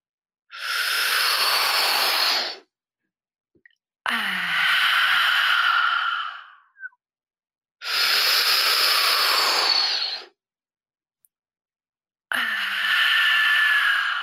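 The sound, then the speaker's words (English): Deep, rhythmic breathing exercise, drawing breath towards the chest and then towards the crown of the head: four long, forceful breaths alternating inhale and exhale, each lasting about two seconds with short silent pauses between them, breathy and hissing. “I'm going to do a few so you can get by the sound of my breathing what the exercise is about, and then I'll guide you through the process, okay?”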